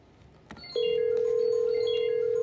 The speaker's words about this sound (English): Somebody's phone ringing.